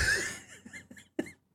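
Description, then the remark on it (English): A sick person coughs several times in a short, uneven series, with a harsh first burst and a sharp, sudden cough near the end, with no talking. “Because I cannot get rid of this cough.”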